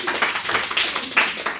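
A short burst of steady applause from many hands, a dense crackling wash of claps that holds at an even, moderate loudness throughout, with no voices over it.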